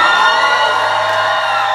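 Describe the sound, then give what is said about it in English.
A loud crowd whoops, cheers and screams a man's name continuously, a dense wall of voices with scattered high shrieks rising above the roar, steady throughout the short burst. “if you haven't heard everybody screaming my name.”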